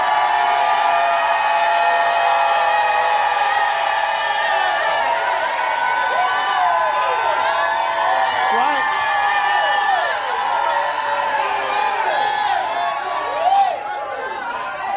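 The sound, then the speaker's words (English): An audience, asked by the preacher to lift their hands and shout, shouts and cheers together in a sustained, loud roar of many voices, with scattered whoops and cries rising above the crowd for the full stretch. “Somebody lift your hands and shout like you never shouted in your life.”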